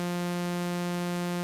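A steady sawtooth tone from a synthesizer's oscillator 1 holds one low-mid pitch without change, buzzy and bright with a dense stack of overtones. It sounds alone and at an even volume, with no voices.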